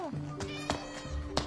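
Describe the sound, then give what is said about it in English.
A cat meows in short tonal cries, with a few sharp clicks or bumps in between, over a brief moment that may also carry a faint voice. “Come on. Kitty. I'm not gonna hurt you.”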